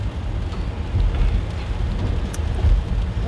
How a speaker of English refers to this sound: Rain, go away.